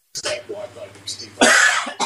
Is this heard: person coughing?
yes